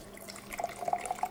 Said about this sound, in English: While we're waiting for that, we're gonna put the vinegar and the water inside the Angry Mama.